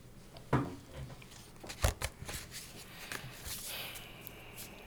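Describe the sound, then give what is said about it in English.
Quiet rustle of a deck of cards being shuffled, with cards being dropped: a few sharp flicks and taps, then a longer soft riffling flutter, with no voices. “We're shuffling, shuffling. Shuffle, shuffle, shuffle, dropping cards.”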